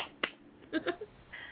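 A few quiet, sharp hand claps, scattered and irregular rather than steady applause, with some faint murmured vocal sounds mixed in between them.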